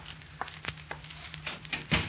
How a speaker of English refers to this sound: Maybe you'd better close that door.